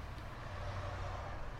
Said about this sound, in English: The cars and trucks approached, repeating the Doppler effect as the sound faded down the highway out front.